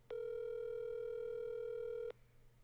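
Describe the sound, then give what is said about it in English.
A phone call rings out with one steady electronic ringback tone, held for about two seconds, then cut off to quiet background hiss. No one speaks or answers. “She's not gonna answer because she's not around her phone.”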